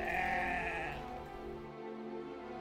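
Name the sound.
sheep bleating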